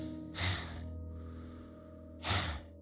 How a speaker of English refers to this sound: For the person choking in the background.